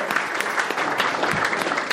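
A group applauds steadily, a dense, even patter of many hands clapping at a fairly loud level throughout, with no speech over it, applauding someone for reading aloud and sitting so well.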